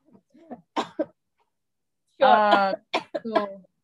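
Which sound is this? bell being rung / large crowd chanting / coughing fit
coughing fit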